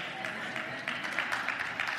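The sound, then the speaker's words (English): Many people clap steadily, a dense patter of many hands at moderate loudness, with a few voices murmuring underneath, clapping after the speaker announces he is leaving for a month. “Hey, when you announce that you're leaving for a month and people start clapping, I don't know how to feel about that.”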